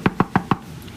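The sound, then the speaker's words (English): Four quick, evenly spaced eager knocks on a door in rapid succession, fairly loud, followed by a brief quiet stretch with no voices. “Followed by eager knock on the door.”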